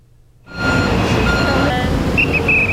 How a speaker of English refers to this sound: The stoplights are dark at this busy intersection, and police are on scene directing traffic. Early Thursday afternoon, four generators went down at Tai Power's Xingda power plant, triggering outages nationwide and confusion on the streets.